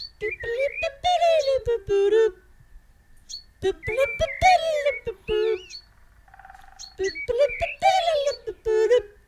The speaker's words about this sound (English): I'm gonna stop the bird right there. Hold on, bird. That sounds eerily similar to an old television theme song.